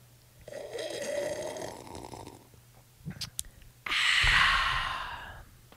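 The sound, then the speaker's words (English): Two loud, drawn-out slurping sips of tea right up against the microphone, separated by a few quick clicks, with no talking. “Let's sip obnoxiously in the mic.”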